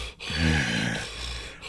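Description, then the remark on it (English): A voice imitates snoring with two low, raspy, guttural snorts, the first longer and louder, the second softer and more drawn out, over a steady hiss. “That's snoring, dude, while he's awake.”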